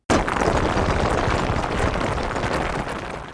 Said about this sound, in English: As a loud gong rings, the farmers run from their homes just before a powerful earthquake brings the buildings crashing to the ground.